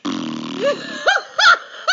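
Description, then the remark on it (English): A voice imitates a slow, relaxed fart: a low, buzzy drawn-out rumble lasting about half a second, then a few short rising-and-falling vocal swoops, moderately loud. “And I heard the most relaxed sounding, leisurely fart you could imagine. It was just like.”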